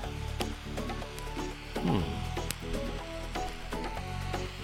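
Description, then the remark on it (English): Soft puffing and blowing on a lit cigar while rotating it, outdoors under sunny blue skies, a string of short breathy draws over a faint crackling sizzle, with no talking. “All right, I'm going to puff and rotate.”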